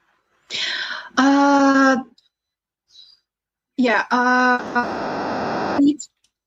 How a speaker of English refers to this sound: I'm sorry, this distortion. Some. Yeah. Can you hear me? Yeah. Yeah, I think your connection is just coming in and out. You're good now.